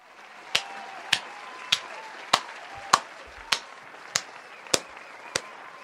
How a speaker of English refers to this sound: I'm gonna let the full applause go, because that was a read.